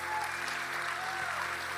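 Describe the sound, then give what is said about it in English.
An audience claps steadily for everybody who said a prayer to accept Jesus, a dense, even wash of many hands with no pauses, holding a constant level for the whole stretch with no voices standing out. “Come on, let's clap for everybody that said that prayer.”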